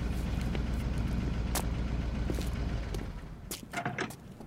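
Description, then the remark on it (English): A blue truck's engine sputters in the distance: a steady low rumble with irregular popping bursts, easing off near the end as a few sharper clanks ring out. “I just had about it figured out as the blue truck sputtered in the distance.”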